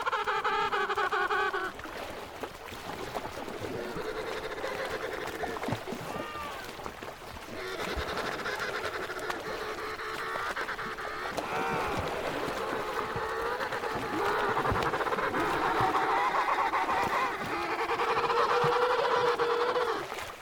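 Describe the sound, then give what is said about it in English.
A dense chorus of calls from the largest of all penguins on the Antarctic ice, recorded by a recordist for the CD: many overlapping braying, trumpet-like cries with warbling harmonic tones, continuing steadily and fairly loudly for the whole stretch with no voices speaking. “are the largest of all of these tuxedo-clad birds. They spend their lives on the Antarctic ice and search for food in the ocean waters.”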